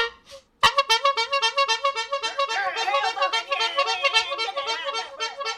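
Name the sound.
horn honk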